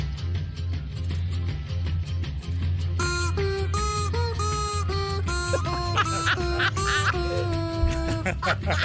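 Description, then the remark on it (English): A rubber chicken is squeaked to play an ominous song in loud, nasal honking notes, stepping up and down in pitch over a steady backing track with a thumping low beat. “That's the best one because it's an ominous song. Yeah, with a rubber chicken.”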